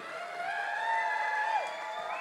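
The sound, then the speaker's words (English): A crowd applauds and cheers steadily for Matthew Pritchard, with sustained whoops and shouts rising above the dense wash of clapping, loud throughout. “One more time, a round of applause for Matthew Pritchard.”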